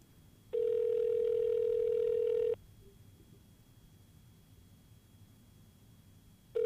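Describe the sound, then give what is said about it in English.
A steady, loud telephone tone sounds for about two seconds, falls silent for several seconds, then starts again as a call is placed; no voices are heard. “And I think, honestly, we should get him on the phone right now.”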